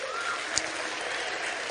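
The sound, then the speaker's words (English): Steady applause from an audience at Cliffmas Carols 2015 for Beacon, the event's sweetener. It is a dense, even patter of many hands clapping at a constant moderate level, with one slightly sharper clap standing out partway through. “Tonight is sweetened by Beacon, so I think a big round of applause to them.”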